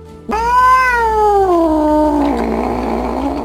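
A single long, drawn-out cat meow, loud, starting abruptly and sliding slowly downward in pitch over about three seconds with no talking.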